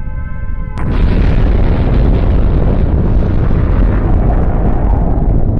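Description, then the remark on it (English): A steady electronic tone gives way to a sudden, massive nuclear explosion: a deep, roaring blast that keeps rumbling loudly and continuously without fading, with no voices present. “Imagine imagery reminiscent of 9/11 popping up in American entertainment, and you can further appreciate the gravity of nuclear explosions in Japanese entertainment.”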